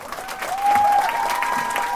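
An audience breaks into sustained, dense applause that swells after a moment and holds steady, with a thin whistle-like tone running through the clapping.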